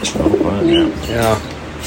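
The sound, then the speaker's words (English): A pigeon named Red, of an unusual colour, coos: soft, low, throaty warbles that roll along in a couple of rounded phrases, with a faint breathy hiss behind them. “I've never seen a pigeon that color.”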